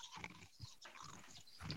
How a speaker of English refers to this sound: There's so much that I hate about that noise. That's me chewing ice.